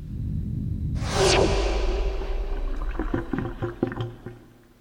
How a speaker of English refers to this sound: Okay, now you can cue the black hole sucking sound.